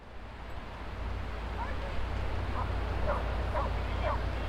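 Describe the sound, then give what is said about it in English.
Several dogs bark and yip intermittently at a dog beach, short scattered barks rising over a steady roar of wind and surf on an open beach. “By the way, with this project, there have also been concerns about the dog beach and that it might go away should hotel guests want a more peaceful vibe.”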